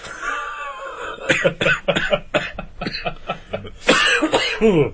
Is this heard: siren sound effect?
no